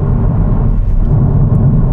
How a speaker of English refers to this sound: You can hear the road noise, can't you? You can hear one. Smooth road, hot road asphalt. Sorry, hot rolled asphalt, I should say.